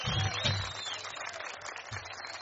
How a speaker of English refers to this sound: Cool. Let's give her a big clap so she can hear us.